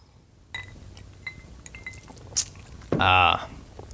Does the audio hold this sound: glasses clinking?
yes